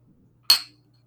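A single bright clink of two beer glasses tapped together in a toast into a microphone, ringing briefly before fading out, with no talking.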